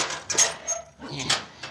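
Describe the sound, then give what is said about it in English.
A heavy metal jail cell door clanks and rattles open, two sharp metallic bursts separated by a brief pause, with scraping and jangling between them. “Oh, Poncho be glad to open the door, Senora Bird.”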